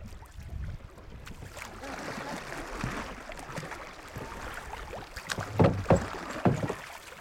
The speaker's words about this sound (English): Our boats push off into the current of the Green River, and on that first day, we travel 12 river miles into the canyon.